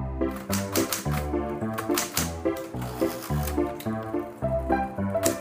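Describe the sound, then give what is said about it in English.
Typewriter keys clack in irregular bursts, fairly loud, layered over a steady rhythmic musical backing with deep repeating tones; no one speaks. “To see the scan of this podcast typed out on my typewriter”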